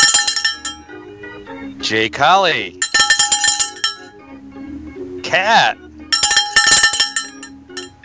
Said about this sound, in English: There you go. More cowbell for...